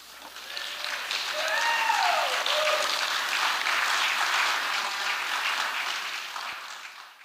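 Sustained audience applause, a dense crowd of clapping that swells, holds steady for several seconds and then tapers off, with a few faint whoops or cheers rising briefly above it.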